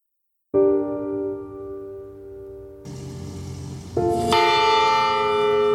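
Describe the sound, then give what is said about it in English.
Church bells of St. Alexander Roman Catholic Church at the Saugeen First Nation, Manitoba, ring out loud and resonant on a cold gray day during a funeral service, a first strike hanging in the air before several more peals pile on, their long overlapping tones swelling into a dense, ringing chorus with no voices. “As the church bells rang on a cold gray day, friends and family embraced and wept as Tina Fontaine's casket was carried past.”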